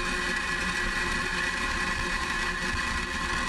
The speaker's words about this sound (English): T-minus 10, 9, 8, 7, 6, 5, 4, 3, 2, 1. Engines full power. And liftoff of Starlink 2-6. Go Falcon, go Starlink.